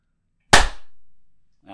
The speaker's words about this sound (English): And then we'll also, I don't know, we'll do a clap as well. Just in case that makes it easier right. For you to edit.